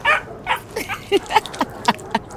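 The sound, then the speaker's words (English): A puppy yips and whimpers in a quick series of short, high-pitched squeaks and whines, fairly clear, about eight little cries over a couple of seconds. “You, me, and our art-loving puppy?”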